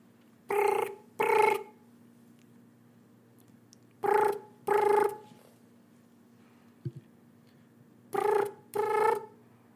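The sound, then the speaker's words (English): A phone line ringing on an outgoing call to a European number, Brian's Taxidermy: a buzzy double-ring tone repeating three times in pairs with pauses of silence between, a faint steady hum underneath. “Let me just make this call.”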